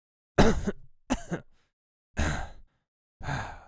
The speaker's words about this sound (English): Back again. You definitely coughed up like a plume of smoke.